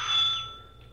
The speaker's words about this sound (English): It was a large two-story place that had been converted into a rooming house. There were several cars parked in the front yard. We went up to the front door and rang the bell.